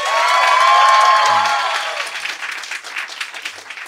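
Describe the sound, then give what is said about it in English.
A debate audience breaks into loud applause mixed with some cheering and whoops, clapping to vote that wokeness is not killing comedy; the clapping swells quickly then thins out into scattered claps over a few seconds. “Okay, now clap if you think, no, wokeness is not killing comedy.”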